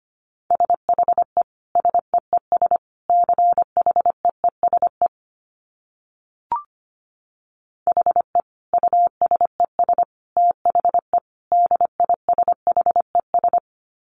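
Morse code at 25 wpm: a single steady mid-pitched tone keyed in quick dots and dashes, two long runs of characters split by a short silent gap with one faint click, no voices.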